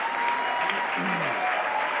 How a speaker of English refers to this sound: Wow. Early applause. Thank you very much.